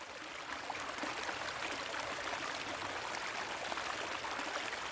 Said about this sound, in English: Here I am, met face to face at the creek, where I'm bearing witness to the easy water. The water. The water laughs at me.